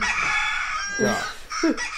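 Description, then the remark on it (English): A loud, shrill rooster crow plays as a backup wake-up alarm, harsh and strained, with a buzzy harmonic tone that rises and breaks over about two seconds. “This is my backup alarm. It works. It does. That's the loudest one I got, too.”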